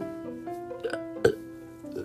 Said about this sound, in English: I burped.